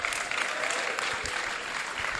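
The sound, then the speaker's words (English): A steady round of applause from an audience in a church, welcoming a speaker as she comes up: a dense, even patter of many hands clapping at moderate loudness throughout, with no voices standing out. “give her a round of applause as she comes up.”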